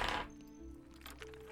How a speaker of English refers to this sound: I'm gonna roll one dice